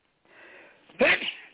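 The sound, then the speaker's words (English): A single sharp sneeze bursts out after a brief breathy inhale, loud, with no talking around it. “God bless you.”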